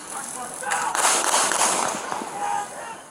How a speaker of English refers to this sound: We see from the security video, Brooks sort of points back over his shoulder with his taser, and you can see an illumination from the taser right. being fired. And then gunshots.